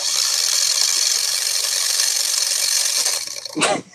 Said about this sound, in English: I have no idea what that is. It's my alarm clock.